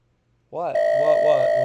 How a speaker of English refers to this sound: It's your phone, David, is it? It's ringing